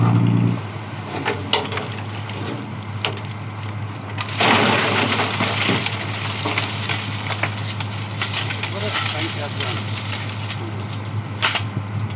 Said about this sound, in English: Okay, so the dredger is coming back in, the boat's speeding up, and yep, you can kind of see the net.